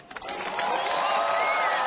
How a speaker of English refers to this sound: I'm going to insert some applause.